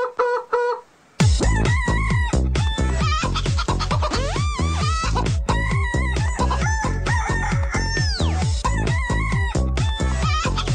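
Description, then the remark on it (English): A bouncy novelty tune built from chicken clucks and rooster crows over a steady, loud beat, following a brief quieter opening; the squawks repeat rhythmically throughout. “because of that, Andy, you're going to get the chicken song”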